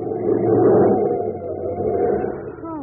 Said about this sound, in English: for a moment there, I thought you were going to hit that other car.